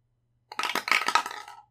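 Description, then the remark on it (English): Dice clatter and tumble across a hard table for about a second in an insight roll that lands on a 9, a quick burst of bright clicks and rattles that slows and settles. Fairly loud, with no voices. “You're being mean to me, Dice. That's a 9.”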